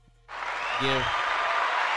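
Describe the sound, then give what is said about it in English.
An applause sound effect. After a brief near-silent moment, loud, dense applause bursts in and continues steadily to the end, with a short voiced whoop rising briefly above the clapping. “Give Larry the round of applause on communication being number one.”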